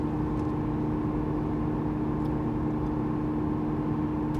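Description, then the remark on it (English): A steady, low engine drone and road rumble from inside a car cruising at a constant 60 miles per hour, with a continuous whirring hum and no talking. “Okay, now I'm going 60 miles an hour, and I'm getting 32.”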